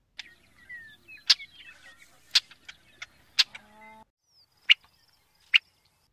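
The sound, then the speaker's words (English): A Brewer's blackbird giving a series of sharp, clipped chip calls at irregular intervals, with a few thin squeaky notes and a brief low buzz between them, clear. “And finally, Brewer's blackbird.”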